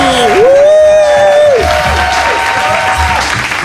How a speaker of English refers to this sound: Wow, they sure liked Mom's act. Listen to that applause.